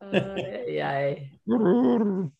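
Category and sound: animal, dog growling and howling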